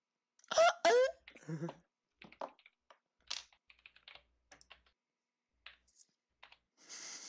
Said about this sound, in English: Okay, go ahead. I hear you're typing, I'm afraid. Yeah, no, it's fine. I'm just doing something.